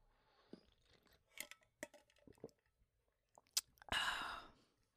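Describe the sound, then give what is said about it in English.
Someone drinking water: scattered wet mouth clicks and soft swallows, then a loud breathy exhale of relief near the end. No talking. “I'm just going to have some water.”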